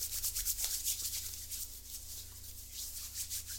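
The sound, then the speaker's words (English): Hands rub together briskly with hand sanitizer, a soft, continuous swishing friction in uneven strokes over a low steady hum, with no one speaking. “Hand sanitizer. Hit me with some.”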